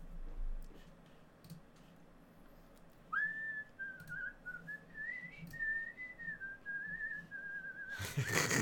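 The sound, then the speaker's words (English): A person whistles a wavering melody, a wrestler's entrance theme music, for about five seconds, sliding up and down in pitch, over faint background noise and a few soft clicks, ending in a brief burst of noise. “he whistles and beatboxes people's fucking theme music.”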